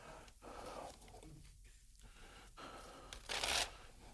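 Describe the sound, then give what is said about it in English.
A piece of paper rips out of a notebook in one short, sharp tear near the end, after a few seconds of quiet rustling and handling. Nobody speaks. “Can you rip me out a piece of your paper”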